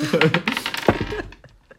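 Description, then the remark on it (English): Dice rattle and clatter across a hard surface in a quick burst of sharp clicks, then a few scattered taps as they settle and stop, rolled by a player for an insight check on the DM in a tabletop game. “can I roll an insight check on the DM to see if you like him? Sure. I shall roll”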